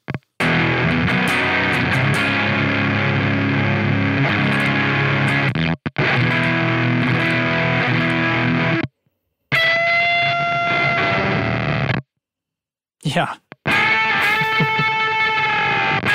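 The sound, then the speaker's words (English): Distorted electric guitar hammer-ons, played without picking, pass through a gate effects pedal turned all the way up, sustained bursts of tone that cut off abruptly into silence, then return as brighter, wavering notes. Fairly loud throughout, with one brief spoken word. “I mean, it's still gates, you know, like if I don't hit anything, but I can just do hammer-ons and get it to let signal through now, you know?”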